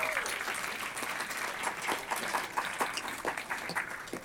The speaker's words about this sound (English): So we do thank them, and please give them a round of applause.